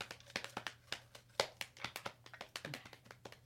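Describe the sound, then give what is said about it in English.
Rapid, uneven hand taps patter on a surface like an improvised drum roll, a steady stream of sharp hits with a faint crinkly rustle mixed in. “We've been drum rolling for like 15 minutes.”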